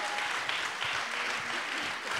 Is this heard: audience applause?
yes